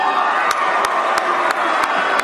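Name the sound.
crowd booing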